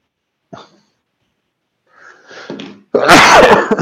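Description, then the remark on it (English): A single loud sneeze: a brief catch of breath, a rising noisy inhale, then a sharp explosive burst that trails off. No one talks. “You don't sneeze in my fucking presence ever, you piece of shit.”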